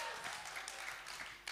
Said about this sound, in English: This is the moment where you do big clapping and you shout, Amen! Amen!